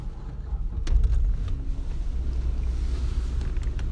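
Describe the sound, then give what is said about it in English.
A car engine turns over and settles into a steady, low idling rumble as the driver starts the car to get air, with a few brief clicks as it starts and no voices. “I'm going to turn on my car because I need air.”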